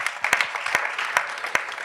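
Audience applause: a dense, steady wash of many hands clapping, with a few sharper individual claps standing out now and then, and no voices over it.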